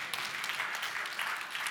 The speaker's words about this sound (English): You can clap. You're allowed. You can clap.